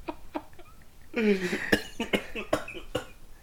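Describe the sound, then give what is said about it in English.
A man coughs in a rapid series of harsh bursts, with one longer strained, wheezing cough in the middle before several more sharp coughs follow. “Let me mute his mic for a second while he coughs.”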